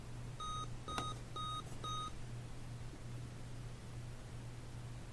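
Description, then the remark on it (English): Four short electronic beeps in quick, even succession from a device as its power button is pressed and held to turn it off, each a bright two-tone chirp, followed by a steady low hum and faint background noise with no talking. “I pressed and held it. We got these beeps.”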